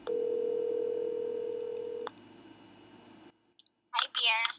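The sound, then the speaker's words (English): A steady telephone dial tone hums for about two seconds, ending with a sharp click over faint line noise; after a short silence, a person begins speaking. “We continue to talk on the phone all the time.”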